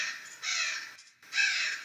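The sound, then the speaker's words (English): Harsh, raspy crow-like caws from attacking falcons come in two loud bursts separated by a brief pause, with no voices. “Where are all these birds coming from? They are attacking!”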